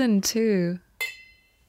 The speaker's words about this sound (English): No laughing and a toast instead. Okay, cheers. To season two.